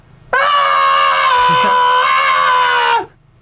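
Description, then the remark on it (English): A person imitates Link's scream from the video game Ocarina of Time: one loud, sustained, strained cry holding steady pitch for nearly three seconds before cutting off, with a brief voice starting right after. “So I can do Link's scream from Ocarina of Time.”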